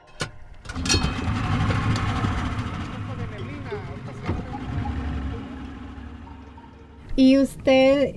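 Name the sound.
boat engine running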